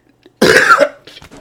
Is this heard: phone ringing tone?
no